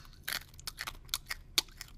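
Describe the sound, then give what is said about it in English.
Crunching of something hard between the teeth, a series of sharp, irregular cracks and crackles over about two seconds, loud, with no talking. “me crunch this thing.”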